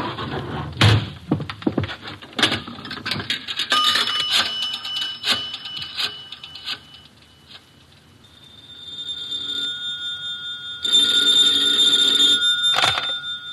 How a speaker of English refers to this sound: Oh, excuse me. Here's a phone call.